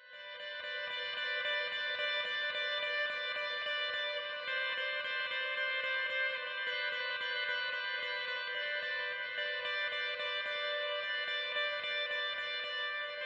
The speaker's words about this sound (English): Next, a really spacey part played with heavy delay effect.